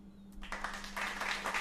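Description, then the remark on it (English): A quick burst of hand clapping, several soft, fairly rapid claps running together into a brief patter of moderate loudness, with no talking over it. “I'm clapping even before.”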